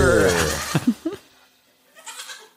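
A goat lets out one loud, wavering bleat, trailing off after about a second, followed by a short quiet stretch with faint, soft noises near the end.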